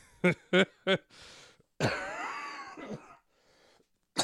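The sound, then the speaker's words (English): Three sharp, loud coughs in quick succession, then a raspy breath and a long, strained wheezing groan as the coughing fit settles. “I'm gonna have to edit this episode and cut out all the coughing.”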